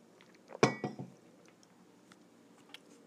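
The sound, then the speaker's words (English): A short slurping sip of coffee from a mug, about half a second long, with a faint clink of the cup, then quiet room tone with a soft tap near the end. “Now it's time for a sip of some Java.”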